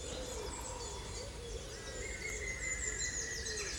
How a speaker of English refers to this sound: Which the woodpecker seems to find very funny.